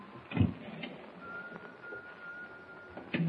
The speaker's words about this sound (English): We've got to find out who that Whistler is, that's all. Got to prove it isn't the spirit of a whistling seaman who was washed overboard years ago, like Teak Barnaby says. Yeah. I got to pull myself together and follow that whistle.